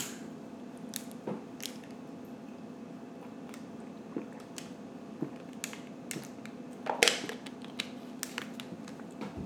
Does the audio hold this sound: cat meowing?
no